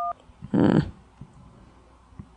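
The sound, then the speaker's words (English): A brief electronic phone tone beeps once, followed by a short burst of loud, crackly line noise as a call connects, then a quiet, faintly hissing line. “I'm gonna take another call in case it's Zach. Call from Luke.”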